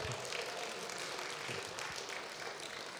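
An audience applauds, a dense, steady wash of many hands clapping that holds at an even level throughout, with no voices rising above it.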